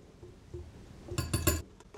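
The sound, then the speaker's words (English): A few quick metallic clinks of a whisk against a bowl while whisking together flour, baking powder, baking soda and salt, three bright taps in a row followed by two fainter ones, with no one speaking. “Whisk that all together.”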